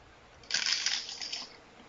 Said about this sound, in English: Yes. I heard that one. You hear that fucking crunch? That is a good taco.